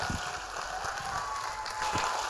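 An audience claps their hands in a dense, steady wash of applause, with a few heavier low thumps scattered through it and no voices.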